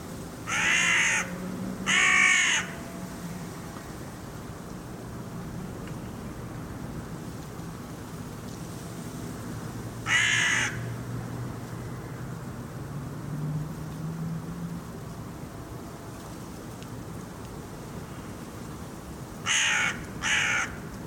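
A crow caws harshly in short bursts: two calls near the start, one in the middle, and a quick pair at the end, over a steady low rumble of background noise, recorded in Vorkuta, Russia, on 1 May 2013.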